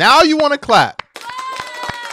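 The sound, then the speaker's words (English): Several sharp hand claps land at an uneven pace, cutting through loud, sliding vocal sounds at the start and a quieter voice murmuring afterward. “Now you want to clap.”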